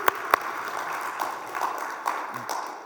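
An audience at a Christian sermon applauds a person who helped, a steady patter of many hands clapping, with a couple of sharp, louder claps early on before the clapping settles into an even, moderate wash.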